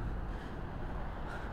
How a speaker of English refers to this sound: I'm enthusiastic about these car noises. They really make me happy.